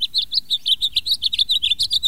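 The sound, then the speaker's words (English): A bright, rapid house finch song of many short chirps and trills strung together in a continuous run, clear over a faint low rumble, with no voices. “Even in the northern states, where the Arctic can seem too close for comfort, springtime erupts from the song of a house finch.”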